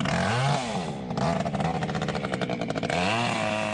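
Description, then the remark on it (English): A chainsaw in a kiwifruit orchard revs with a rising and falling whine, then settles into a rough, rattling drone as it cuts out kiwifruit vines infected by PSA, before revving up again. Loud and steady, with no voices. “A sound common in kiwifruit orchards as growers cut out vines infected by PSA.”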